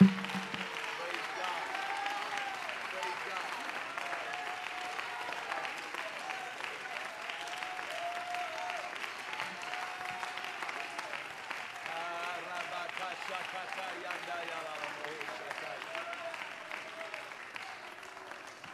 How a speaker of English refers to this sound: Now, so I don't feel alone up here tonight, would you put your Bible down and clap to the Lord like you love him with all your heart? Come on, do it.